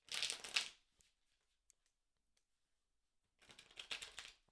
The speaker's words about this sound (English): Connect to the cards by listening into the sound of them being shuffled.